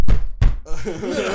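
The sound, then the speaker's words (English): Two loud knocks on a wooden door, about a third of a second apart, followed by a person's voice starting to speak. “Knock, knock, knock.”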